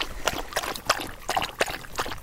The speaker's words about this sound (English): Autumn is already approaching the Adirondacks. Come across this beautiful little babbling brook that runs through the trail.